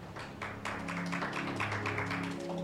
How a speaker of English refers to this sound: Can we clap our hands for our guest?